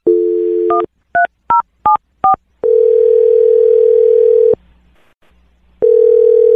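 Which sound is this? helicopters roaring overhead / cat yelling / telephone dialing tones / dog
telephone dialing tones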